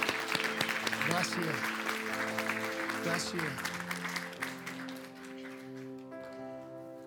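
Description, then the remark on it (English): A church audience at New Life and the Answer applauds to welcome a new member into the family of Christ Jesus. The clapping is steady and dense and gradually tapers off, while a voice speaks briefly over it and sustained organ-like tones ring underneath. “Let's welcome.”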